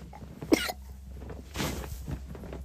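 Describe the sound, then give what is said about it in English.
A young child coughs: a short sharp cough, then a longer, rougher breathy one, and another abrupt cough at the very end, with no talking. “And a cough in the face.”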